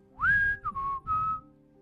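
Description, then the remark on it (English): A person whistles a short three-note phrase, rising sharply then stepping down, clear with light background rumble; no talking. “And he whistles back with.”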